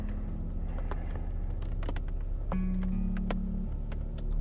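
Steady low rumble of road noise inside a moving car, with a faint droning hum and a few soft clicks and ticks scattered throughout, no voices.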